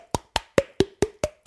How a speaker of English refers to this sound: You can snap your fingers, clap your hands, bang a table, do that thing where you kind of smack your cheeks and it's like...